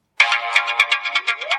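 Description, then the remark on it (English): A Droid by Verizon Wireless phone ringtone cuts in abruptly, a loud electronic tone pulsing in rapid beats with a rising sweep near the end. No one speaks over it. “We're broadcasting ringtones.”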